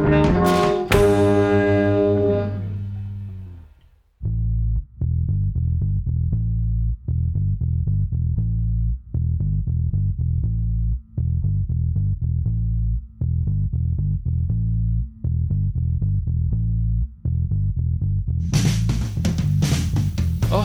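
Loud, distorted band music: a big ringing chord fades out, then a heavy, chugging riff pounds in steady repeated bursts, with a bright crash near the end. No voices.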